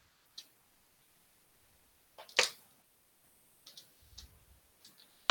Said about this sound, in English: Almost a knocking, but more of a hard metal on hard metal sound.